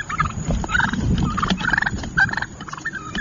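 Wild turkeys gobble in rapid, warbling bursts, several rolling calls overlapping, as a turkey starts to attack the person taking a picture in New Jersey, with a low rumbling background noise underneath throughout.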